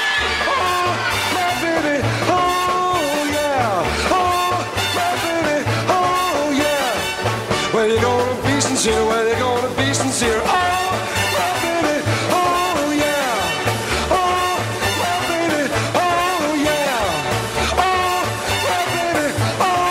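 A Broadway show tune plays loudly and continuously, with a lead singer over a full orchestra, a steady bouncing bass line, and excited shouting voices mixed into the performance.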